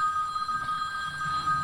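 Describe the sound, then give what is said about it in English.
A mobile phone, left switched on, rings with a call from a daughter, a steady, high electronic tone that holds for the whole short moment, fairly clear over a low murmur and with no talking. “Someone didn't turn their phone off.”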